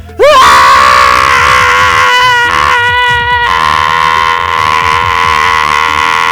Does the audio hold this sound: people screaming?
yes